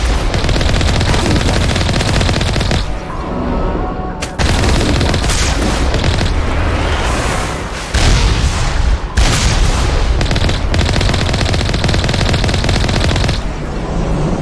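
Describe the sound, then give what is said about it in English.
Loud, dense video game combat: rapid gunfire bursts overlapping with heavy cannon booms, continuous for the whole stretch, with brief gaps between volleys and no talking. “Something was shooting at us. I couldn't tell what it was, so I just shot the cannon back.”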